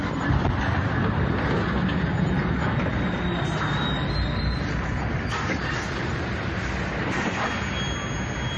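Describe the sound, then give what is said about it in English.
A train rolls through a railroad crossing with a loud, steady rumbling roar that holds for several seconds, a thin high-pitched whine faintly riding over it. No one speaks. “It definitely sounds like a train's coming, but hey.”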